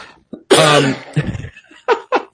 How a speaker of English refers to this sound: I'm passing my cough on to you through the virtual airwaves.